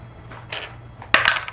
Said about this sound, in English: Roll me a d6, please.